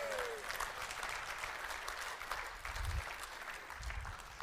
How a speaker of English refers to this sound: Oh, you can clap.